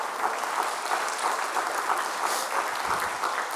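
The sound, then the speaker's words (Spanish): An audience applauds for the Lord, a dense wash of many hands clapping, sustained and fairly loud without a break for the whole stretch. “Si usted lo cree así, dale un aplauso al Señor.”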